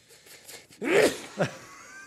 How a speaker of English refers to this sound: Oh, my gosh. God bless you. Man, it's going to take him 2 weeks to edit this one because you just blew the speakers out.